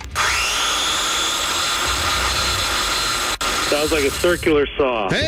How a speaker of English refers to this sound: Sounds like a circular saw. Hey, circular saw is the correct answer.